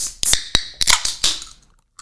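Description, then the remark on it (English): Cans of sparkling orange and prickly pear juice being cracked open: a handful of sharp, crisp pops in quick succession, each followed by a bright fizzing hiss that gradually fades to silence, with no talking. “to drink a can of sparkling orange and prickly pear juice to slake their thirst”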